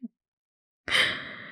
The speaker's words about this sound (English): He's yawning right now. Yes, I am.